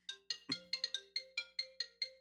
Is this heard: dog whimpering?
no